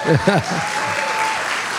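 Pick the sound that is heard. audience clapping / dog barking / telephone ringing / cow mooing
audience clapping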